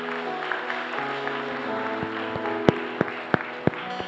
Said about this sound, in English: I believe you are clapping for Jesus.